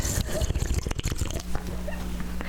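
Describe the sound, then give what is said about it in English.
Wet slurping first sips of a just-opened Toppling Goliath Forced Flair Double India Pale Ale, a cluster of short, noisy mouth sounds over the first second and a half, then a steady low hum underneath. “I just cracked it open. I'm going to take the first sips. Slurp, slurp.”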